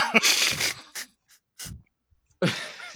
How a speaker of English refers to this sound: And that yawn hits different, apparently.